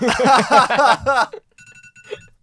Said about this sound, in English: There's your alarm.